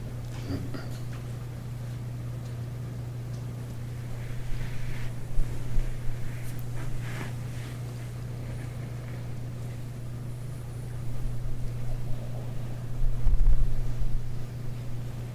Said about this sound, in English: It's nice to hear the sound of the rain. This is the body of spring.